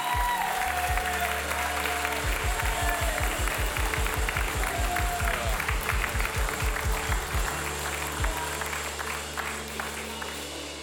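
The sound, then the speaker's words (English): An audience at Trinity Church in Dallas breaks into a loud, sustained round of applause welcoming speaker Peter Lewis, dense and steady for about ten seconds, with a rhythmic low thumping beneath it for a stretch before the clapping gradually thins. “Let's give Peter Lewis a big Trinity Church round of applause.”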